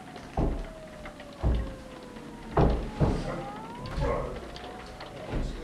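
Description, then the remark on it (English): Heavy, dull knocks on a door by a drunk doctor, about five blows at uneven intervals, with a faint thin tone drifting in the background between them. “who's that knocking?”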